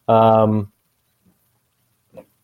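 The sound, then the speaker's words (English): A dog lets out one loud, drawn-out grunting groan, about half a second long, followed by two faint, brief snuffling sounds. “This fucking dog is hurting me here.”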